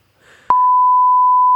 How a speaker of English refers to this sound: Can we beep it? Can you just tell us and you can beep it?